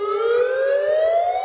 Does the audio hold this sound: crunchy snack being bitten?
no